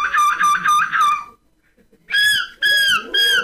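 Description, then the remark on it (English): A person competing in a Belgian gull-screeching contest imitates a seagull's screech: a rapid burst of five short squawking cries, a brief pause, then three longer, drawn-out wailing calls, loud with no talking. “People imitating seagulls.”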